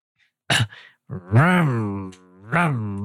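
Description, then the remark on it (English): A voice mimics an engine revving: a sharp breathy burst, then a buzzing vocal tone that climbs and falls in pitch, holds steady, and ends with another rough burst. “Yeah, you're like revving.”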